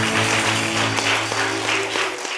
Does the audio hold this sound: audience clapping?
yes